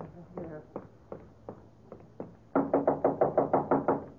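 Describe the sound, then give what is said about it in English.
Knocking on a door, a few spaced raps at first, then a rapid, louder burst of about eight insistent knocks, with faint background murmur underneath. “Open the door.”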